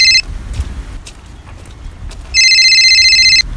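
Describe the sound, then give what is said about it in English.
A phone's electronic ringtone sounds twice for an incoming call: a brief bit at the start, then a longer, loud, steady ring of bright stacked tones about a second long, over low background rumble. “Oh, God. He's ringing me.”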